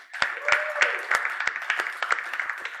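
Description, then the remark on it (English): A crowd at a church service applauds the pastor steadily, with a dense patter of many hands and a few sharper, louder claps standing out throughout. “Can we go ahead and give a round of applause”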